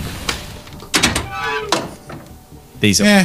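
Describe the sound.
A voice imitates a car door thunk, making a few short, punchy mouth thumps spaced apart, then finishing with a louder, breathy voiced hiss.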